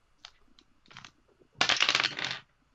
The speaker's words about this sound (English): Can somebody roll me a percentile dice, by the way? I can.